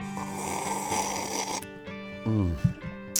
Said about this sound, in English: Was that a sip or a sniff? That was a sip. Sip, sniff. Okay. Yeah, right. I did both at the same time to save time.